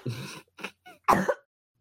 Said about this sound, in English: that I even unmuted a cough.